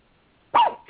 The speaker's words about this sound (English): Oh, sorry, my dog barked. Hi, baby.